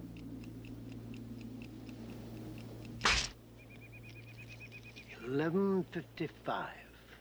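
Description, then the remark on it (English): A clock ticks in a steady, even rhythm, fairly quiet, then strikes midnight: a sharp burst cuts in, followed by a thin sustained tone and a short voiced vocal sound near the end. “But then we hear the clock strike midnight.”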